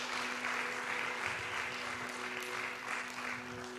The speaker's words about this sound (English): Passion Life Church, come on, let's give a great round of applause to everybody who prayed that prayer.